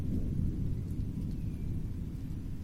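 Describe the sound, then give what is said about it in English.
A steady, deep low rumble of thunder from an approaching storm rolls on without a break, fairly loud and heavy in the low end, with no voices over it. “Looks like a storm's coming in.”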